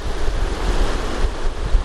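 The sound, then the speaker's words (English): Steady rushing surf of ocean waves breaking on a shore below cliffs on a sunny day fills the air with a broad, continuous roar, mixed with low, blustery wind buffeting the microphone. No one speaks. “I'm just gonna try and get some of these waves. These waves are really good.”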